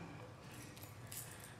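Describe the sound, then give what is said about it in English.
A bunch of keys jangles in a few quick, bright metallic bursts, with the clinking louder toward the end and a low steady hum underneath. A large bunch of keys, some of them for a family summer place in northern Michigan. “And a whole mess of keys, some of which are the keys to our family's summer stomping grounds in northern Michigan.”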